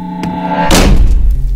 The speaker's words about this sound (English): The odd man contorts to a curtsy and flamboyantly motions you inside Bennett Manor. The door slams shut behind you on its own.